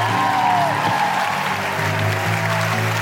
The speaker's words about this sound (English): A big round of applause to Cindy V, Leila Hussein, and Laura Bates.